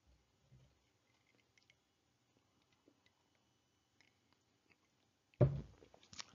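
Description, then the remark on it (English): Someone takes a sip of water: faint, scattered mouth clicks and soft slurps, then a sudden louder gulp or breathy swallow near the end. No one speaks. “Excuse me. That's good water.”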